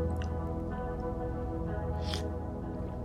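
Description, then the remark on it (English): A quick slurping sip of coffee, a short wet burst of sound, with a fainter earlier slurp, over a steady low hum. No one speaks. “And right now I'm going to take a huge sip of my delicious cup of coffee.”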